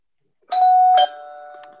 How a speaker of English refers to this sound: Hold on, let me get a doorbell sound effect. Bing bong, bing bong. Okay, here.